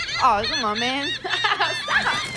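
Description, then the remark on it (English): Loud clucking comes in a quick run of warbling, rising-and-falling bursts that fill a couple of seconds with barely a pause. “Because the fucking birds.”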